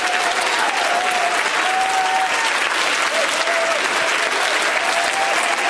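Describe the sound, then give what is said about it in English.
A large audience claps their hands unto the Lord during a sermon about the Holy Ghost, a dense continuous wash of hand claps at a fairly loud level, with faint voices and cheers mixed into the applause. “Oh, why don't you clap your hands unto the Lord if you believe that?”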